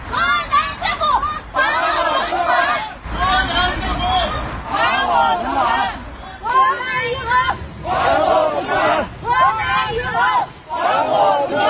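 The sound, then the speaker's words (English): A large crowd of bank customers demonstrating in front of the province's Banking and Insurance Regulatory Commission in China shouts in rhythmic unison, chanting phrases in repeated bursts separated by brief pauses, loud and insistent over a background of general hubbub. “As part of the demonstration, some of them held banners shouting phrases like, "We beg the state to help us.”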